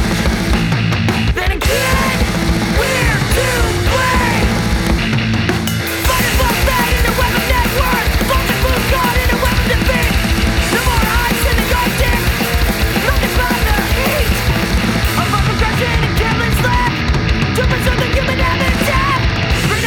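A loud, dense rock song with shouted vocals over distorted guitars and pounding drums. It drives steadily throughout, broken only by a split-second drop near the start.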